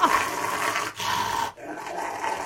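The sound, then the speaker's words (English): A dog growls steadily while getting its nails clipped, a continuous rumbling snarl broken by two brief pauses, with no talking. “This is a dog getting his nails clipped.”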